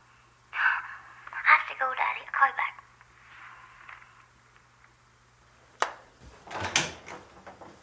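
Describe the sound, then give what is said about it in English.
A telephone rings in several short, repeated bursts, followed by a pause, a sharp click as the receiver is picked up, and then a person begins talking. “Why did you answer my phone?”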